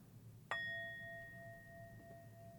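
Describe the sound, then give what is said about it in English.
A single singing bowl is struck once, giving a sharp attack and then a pure, steady ring of several clear tones that hangs on without fading over a low background hum. “I'm going to sound a beautiful bell from my singing bowl.”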